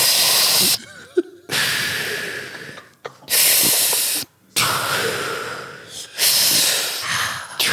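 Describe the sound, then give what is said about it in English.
A person breathes hard and forcefully in a series of about five loud, hissing breaths separated by short pauses, with no talking, demonstrating a breathing exercise for easing a stitch while running. “Breathe into your stitch when you're running.”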